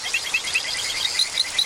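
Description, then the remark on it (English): Poison dart frog calls: a steady series of short, high chirps repeating about five times a second over a dense, hissing chorus of insects and other frogs. “Darren Meyer and Davey Stiles recorded and mixed this collection of their calls.”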